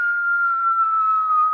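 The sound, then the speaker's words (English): A person whistles in imitation of a bomb dropping in World War I: one sustained high tone lasting under two seconds, sliding gently downward in pitch, with no talking over it. “And because he's got little dog ears, you know, usually, you know, if you think about the bombs dropping in World War I, you know, there's a...”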